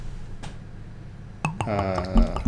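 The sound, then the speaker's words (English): A faint click, then beer aged in oak wine barrels pours steadily into a glass, its gurgling tone rising as the glass fills. Nobody speaks. “Whoa, that's aromatic, even before I pour it.”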